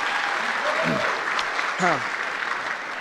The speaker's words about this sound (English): That's awesome, man. Yeah. And, round of applause.